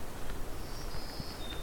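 Several black-throated green warblers sing soft, high, buzzy phrases of drawn-out notes that shift slightly in pitch, in a stand of white cedar and black spruce about a half hour before sunset, faint against a quiet background hiss with no talking.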